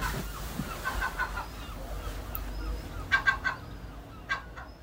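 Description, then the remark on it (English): Herring gulls call in harsh, repeated squawks, with a quick burst of three loud cries midway and a lone call near the end, over a low outdoor rumble. “I appreciate they are herring gulls.”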